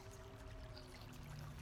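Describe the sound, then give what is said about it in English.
Ale pours steadily from a mug held to the lips of a tied-up person, one continuous stream, a brief liquid splash and gurgle with no voices over it. “Flint's gonna walk over next to Crunch and just kind of, like, hand him a mug of ale”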